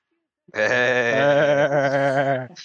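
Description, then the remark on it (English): A person imitates a sheep with one long, wavering bleat held for about two seconds, a loud, nasal, quavering voice that ends abruptly. “You just, that sounds like a sheep.”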